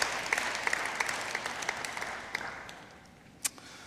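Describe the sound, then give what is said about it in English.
An audience applauds during a talk on the biblical creation story: dense, steady clapping that gradually thins and fades out, ending with a few scattered claps, including one sharper clap near the end. No one speaks. “You're allowed to clap.”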